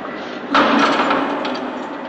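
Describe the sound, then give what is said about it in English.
A heavy door bangs shut against a steady background hiss, its ringing clatter lingering as a couple of faint metallic clicks follow, like a lock being turned. No one speaks. “Better move out of the way there. He wants to lock that door”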